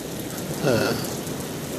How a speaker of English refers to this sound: It's thundering and lightning. I love this weather. I just wanted you guys to hear it. I'm waiting for my ride home from work, but I can describe it to you. I mean, it's pouring gloriously. The freaking light show is crazy.